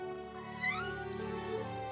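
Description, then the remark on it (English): A single long, drawn-out meow from Bubble Kitty, a cat just brought back home, fairly loud, rising and wavering in pitch before trailing off, with no talking around it. “Thank you all for bringing my little kitty back home, and thank you for saving me too.”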